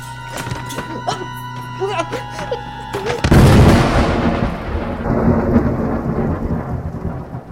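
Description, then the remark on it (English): Voices are heard for the first few seconds, then a loud thunderclap bursts in and rumbles on into a steady, heavy hiss of storm rain that continues to the end. “No monsters to punch for weeks, and the first chance I get to work on my tan, there's a storm.”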